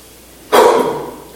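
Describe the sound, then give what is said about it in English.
A single sneeze bursts out suddenly after a quiet moment, a sharp, noisy, breathy blast that trails off over about a second. No one talks. “Now, Gesundheit.”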